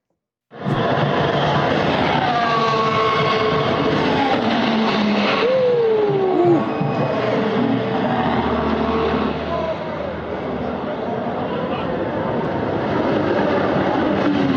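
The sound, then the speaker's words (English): A Formula One race car crash involving Ferrari driver Carlos Sainz on a street course: a loud, continuous roar of engine noise with whining pitch sweeps that rise and fall, lasting throughout, with muffled voices faintly underneath. “Carlos Sainz, one of the two star drivers for the Ferrari team, had an accident on the course, all captured on video.”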